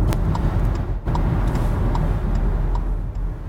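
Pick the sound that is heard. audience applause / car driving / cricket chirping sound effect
car driving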